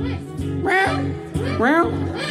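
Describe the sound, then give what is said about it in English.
Two drawn-out, wavering meow-like cries, fairly loud, likely a person imitating a cat, over a low steady background hum. “Cat?”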